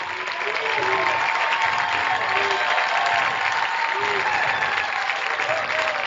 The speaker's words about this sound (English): Cooper Prasoski gets a round of applause from the Bennington folks here.